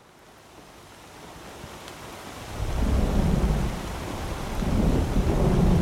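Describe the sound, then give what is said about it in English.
A thunderstorm on a Thursday night in Chandler, Oklahoma, with deep, rolling thunder that swells in from a rain-soaked hiss, rumbling loudly around the midpoint and building again near the end, with no voices present. “It's a stormy Thursday night in Chandler, Oklahoma”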